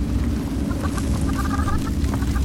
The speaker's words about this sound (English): They have chickens in here? They do have chickens in here.